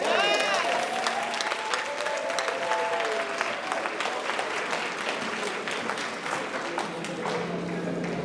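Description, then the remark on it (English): A large crowd applauds steadily after the announcement of a 21-day fast starting tomorrow, the dense clapping lasting several seconds, with a few voices and cheers rising over it near the start before the applause slowly thins. “That should make you clap.”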